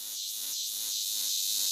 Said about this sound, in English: for months in his garden outside his house, which he thought and his next door neighbors thought were insects, cicadas, which if you've ever heard them in the tropics in Cuba and Brazil and places like that, are very loud and very metallic sounding.